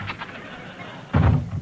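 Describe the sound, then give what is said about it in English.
A door being opened: after a second of faint hiss, a short, loud burst of low thumping and rattling sounds as it swings open. “I'll open the door.”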